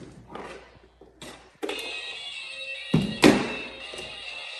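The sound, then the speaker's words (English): A few handling knocks, then a toy on the floor switches on with a steady, buzzing electronic whine of sustained high tones, broken by two soft thumps and continuing to the end. No one speaks. “That's the actual toy making the noise.”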